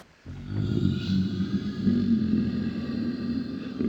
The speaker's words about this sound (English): You try to speak with this thing, and all you can hear are just terrifying, low, guttural, growling.